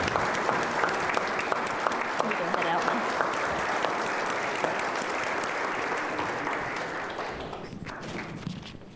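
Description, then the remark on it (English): A crowd applauds steadily for several seconds, a dense wash of many hands clapping at an even, loud level that thins and tapers off toward the end. The audience is applauding panelists after a panel conversation. “Please, everyone, give them a round of applause.”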